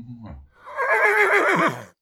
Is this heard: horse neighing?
yes